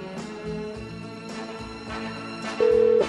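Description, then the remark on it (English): A phone line rings once near the end, a steady electronic ring tone heard through a call placed for a weekly show segment called I'm Allowed, over a busy background of music-like sound with no one talking. “It's a ringing.”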